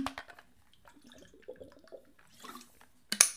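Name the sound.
running water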